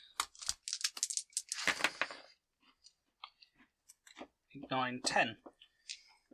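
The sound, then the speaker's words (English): A handful of dice, rolled during a game, clatters and clicks against a hard surface, with a dense rattling burst followed by scattered sharp taps, then a brief voice sound near the end. “I did get a lot of dice. That is good dice.”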